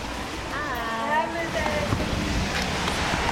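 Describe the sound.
Heavy rain pours down in a steady, dense hiss that fills the whole scene in northern Cincinnati, with a faint murmur of voices partly buried underneath.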